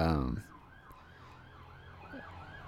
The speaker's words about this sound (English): These fucking police, there's like 5-6 cop cars going by there.